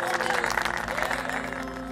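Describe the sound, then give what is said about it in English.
A dense, steady roar of applause from a large crowd of Yadavas, loud and continuous for the whole moment, with a murmur of voices mixed into the clapping. “The Yadavas supported him with a thundering applause.”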